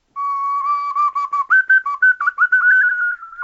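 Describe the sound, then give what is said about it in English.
A simple melody from a video game plays alone on an ocarina in pure, flute-like tones: a long held note, then a run of short rising notes that settle into a sustained higher pitch. “For what an ocarina is from that game.”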